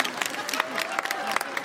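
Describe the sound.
A short burst of scattered applause from a small live audience, quick uneven claps at moderate volume, with faint voices murmuring underneath.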